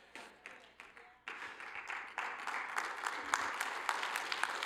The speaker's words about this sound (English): Thank you for that kind of interesting little clap session there. I do appreciate it, though.